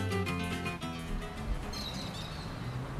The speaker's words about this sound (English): It may be a sprawling and industrial city, but wherever you are in São Paulo, Brazil, you can't escape the sound of birds. In this density, each building echoes with the sound of their calls.